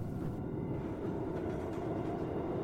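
A steady, heavy rumble of a London Underground Northern Line train running along the rails, loud, with a continuous low roar and faint rattling that never lets up.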